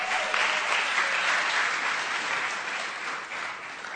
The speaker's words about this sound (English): I think you guys can do better than that on clapping. You're not clapping for me. You're clapping for what Jesus did for a woman who had been blind for 3 years.